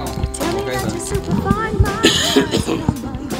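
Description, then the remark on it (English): A few short, rough coughs break out in quick succession near the middle, fairly loud, over a steady voiced, tonal background. “We're back, and I'm still coughing.”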